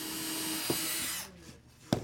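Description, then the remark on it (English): A power tool whirs with a steady, high-pitched whine for just over a second, then cuts off, leaving a quiet gap before a couple of sharp knocks, as kids use power tools at work tables in a cavernous underground workshop in Minneapolis, Minnesota. “The kids mostly use work tables, and many of them use power tools.”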